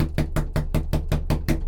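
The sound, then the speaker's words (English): A rapid, steady series of about eight firm knocks on a door, evenly spaced and fairly loud, with no voices. “If you're in there doing that kinky sex shit where you wait for someone to knock on the door and then act like you're not at home while you're doing it, I'm gonna be so pissed.”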